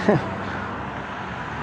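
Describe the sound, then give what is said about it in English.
Steady rumble and hiss of traffic at a street intersection, a continuous wash of road noise, with a brief voice-like sound at the very start. “I'm just here at the intersection, so waiting for the bus.”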